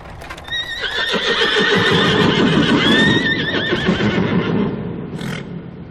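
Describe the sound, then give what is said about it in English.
The four horses of a calèche drawing up in the Borgo Pass whinny in a long, wavering neigh while hooves clip-clop steadily on hard ground underneath, fairly loud, with a brief rustling burst near the end and no voices. “A calèche with four horses had drawn up beside us.”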